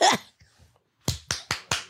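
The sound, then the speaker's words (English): A quick run of five sharp hand claps in a steady, brisk rhythm, loud and crisp, given in answer to a call to clap if willing to try cocaine, following a short noisy burst and a moment of near silence. “Clap your hands if you'll try coke.”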